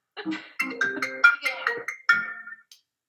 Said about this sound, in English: Whose phone was that? I mean... That was the loudest phone ever.